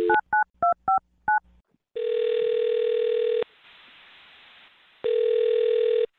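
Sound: telephone number being dialed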